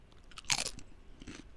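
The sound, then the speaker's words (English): Two crisp crunches of someone biting into a chip, a louder bite followed a moment later by a softer chewing crunch, with no talking. “I was actually crunching that.”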